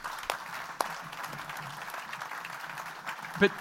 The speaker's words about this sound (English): And we want to applaud you, don't we? We want to thank you for what you're doing.